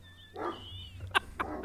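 Dogs barking in a few short, sharp bursts, one drawn-out bark followed by two quick yaps, with a thin high whine near the start and steady low background rumble.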